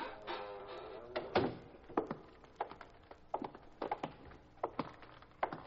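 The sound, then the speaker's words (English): A heavy warehouse side door shuts with a dull thunk, followed by a steady series of footsteps walking across a hard floor toward the far end of the quiet warehouse. “All right, shut the door and walk down to the far end.”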